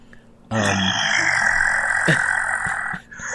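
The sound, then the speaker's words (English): A single deep, guttural death growl from a person, raspy and loud, held steadily for about two and a half seconds close to the microphone before cutting off abruptly. “Have you ever growl of death so hard that you have a coughing fit?”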